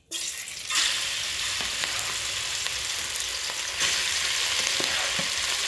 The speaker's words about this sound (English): So what do we got here? This is cubed pork that I am going to saute in some garlic and just salt and pepper. As that cooks down, it releases a lot of the juices.